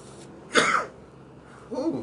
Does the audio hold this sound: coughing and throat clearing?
yes